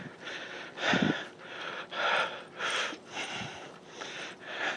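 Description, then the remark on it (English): Heavy, rhythmic breathing of an overweight person jogging at around a 15-minute pace, with about five loud, rushing breaths in a steady pattern and no talking. “And it sounds ridiculously slow for someone who's run, but it's actually, for someone who's overweight, this is a pretty dedicated pace, so you can tell by my breathing.”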